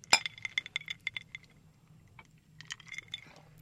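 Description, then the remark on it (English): Glasses of Sazerac cocktail clink together in a toast: a sharp opening chime followed by a quick run of bright, ringing taps, then a second cluster of clinks after a short pause, with a low hum underneath. “Here's the proper Sazerac. Cheers. Cheers. Cheers. Cheers.”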